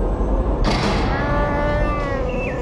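Chewie the Wookiee lets out a drawn-out, anguished howl of grief, a groaning, moaning cry rising over a low rumbling background with a brief burst of noise partway through. Nobody speaks and no music plays.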